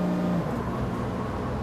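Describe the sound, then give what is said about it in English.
A bus drives a group back to their hotel after leaving the Colosseum, with a steady, continuous engine rumble and road noise, even in loudness, with a brief low hum at the start and no voices. “The group left the Colosseum and stopped for some gelato, which is Italian ice cream, before taking the bus back to the hotel.”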